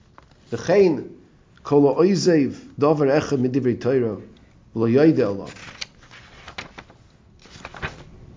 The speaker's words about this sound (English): I'm sorry, turning the page in the wrong direction here.